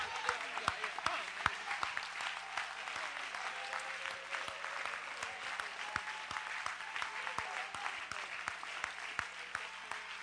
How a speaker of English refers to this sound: Now clap your hands, church, and say it's done right now.